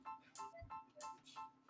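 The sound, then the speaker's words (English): A phone ringtone chimes in quick repeating bursts, bright and clear, with no one speaking over it, as a phone call is placed to an interviewee. “We are calling them right now.”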